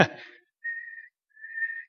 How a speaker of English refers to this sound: And then the man writing the book says he was enumerating all the things that he said that they had, and he said, and we had a whistle.